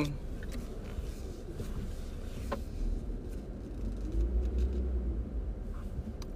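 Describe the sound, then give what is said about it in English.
A car engine with something wrong with it rumbles roughly and steadily, a dense low droning noise that swells slightly partway through, with no one speaking over it. “My guy, it sounds like my car. Something's wrong with my car.”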